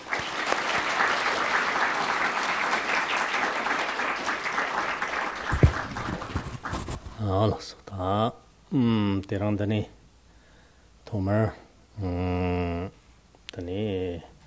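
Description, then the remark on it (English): An audience claps steadily and loudly for about seven seconds in the evening to welcome a guest speaker, the applause dense and sustained before fading out, followed by a man beginning to speak in measured phrases. “He's a bridge between culture, and it's a great honour to welcome him here this evening, and if you could all join me in giving him a clap and welcome him tonight.”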